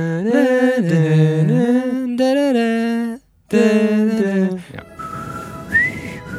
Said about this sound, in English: I can whistle better, by the way. Oh, I'm bad. That's even worse. It's like Gizmo whistling.